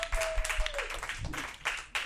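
A crowd at a live trivia show breaks into a short burst of applause for a contestant, many hands clapping in a dense, crackling wash that holds steady for about two seconds, with a faint whistle-like tone fading early on.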